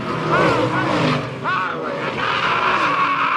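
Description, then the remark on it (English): Race cars roar past on a track, loud, engines whining and sweeping in pitch over a constant dense rumble, with a hint of tires squealing. “Were those the other cars?”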